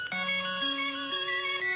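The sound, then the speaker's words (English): A phone ringtone plays the theme of the original DuckTales video game, a retro chiptune-style melody: bright buzzy electronic tones stepping upward through a few sustained notes, loud and clear with no talking. “Oh, you want to hear my ringtone?”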